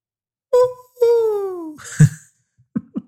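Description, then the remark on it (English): A person imitates hooting with their voice: a short hoot, then a longer drawn-out hoot that slides downward, followed by a breathy burst and two quick clipped hoots, fairly loud. “So, what does that hooting sound like”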